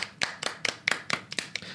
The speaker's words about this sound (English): Let's give a clap for secure attachment because we all need them.